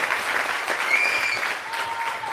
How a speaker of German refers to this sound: Und dafür ein herzliches Dank und einen riesen Applaus.